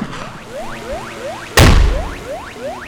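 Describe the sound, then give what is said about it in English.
A single loud blast from a bird-scaring air cannon booms out midway and slowly fades, while a series of rising, chirp-like bird calls repeats at a steady pace before and after it. “They've spent more than $500,000 on the latest bird-scaring technologies, like the sirens, lasers, drones, and air cannon.”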